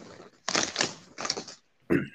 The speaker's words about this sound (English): I'm sorry, I couldn't hear you over the rustling of the bag. You're not eating a bag of Ruffles. The fucking wavy ass chips.